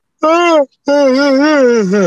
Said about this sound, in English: I'm glad you grabbed the phone for that to yawn into it as loud as you could, though.